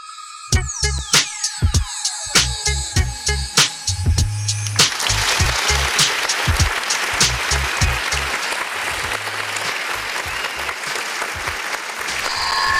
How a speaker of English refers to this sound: Yo, I came in mad loud right there, huh? That shit was the motherfucking applause. Then you heard the fucking echo, the feedback.